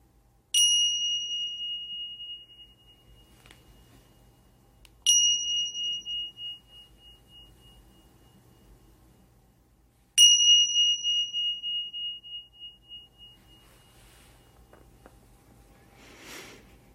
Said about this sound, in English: Now opening yourself to the sounds of the three bells signifying the end of this meditation.